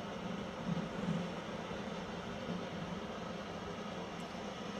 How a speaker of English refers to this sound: And just gently focus on your breathing as you hear the storm sounds in the back.